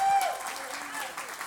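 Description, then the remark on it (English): A church audience claps together as a hand clap of praise to the Lord, a steady, dense wash of applause, with a brief sustained tone sounding at the very start before fading under the clapping. “Come on, give the Lord a hand clap of praise in this place.”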